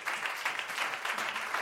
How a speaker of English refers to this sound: A round of applause for the message.